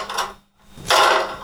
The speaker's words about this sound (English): What ghost slammed that door?